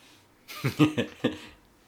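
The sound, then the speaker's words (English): A quick run of four short, breathy sniffs under a door, bunched into about a second, each a sharp puff of air with brief gaps between, and no talking. “I'm sure if you heard that, that's her sniffing under the door.”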